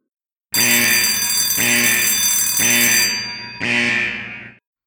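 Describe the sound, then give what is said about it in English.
A loud, harsh alarm bell rings in four rhythmic bursts of about a second each, metallic and buzzing, with no voices present. “Alarms were ringing. A siren shrieked.”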